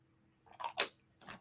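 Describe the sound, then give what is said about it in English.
Quiet sipping of water: a couple of brief wet slurping bursts with a soft swallow, separated by short pauses, with no talking. “let me take a quick sip of water.”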